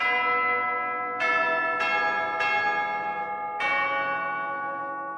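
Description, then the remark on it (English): Church bells ring out in a slow, uneven sequence, five resonant strikes whose rich tones linger and overlap as they decay, heard clearly with no talking. “Sorry, can everyone hear the bells happening in the background there?”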